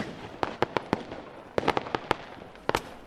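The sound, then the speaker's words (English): Fireworks sound effect for New Year's: fireworks crackle and pop in quick irregular bursts, a dozen or so sharp bangs in two clusters over a low background rumble, moderately loud. “You need fireworks, maybe fireworks sounds”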